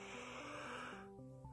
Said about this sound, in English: You have to forgive me, though, for the yawning. I went to do this show a little bit later than I thought I would.